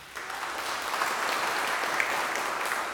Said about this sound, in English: Okay, I'm going to say you might want to wait till after the sermon to applaud, but let us pray.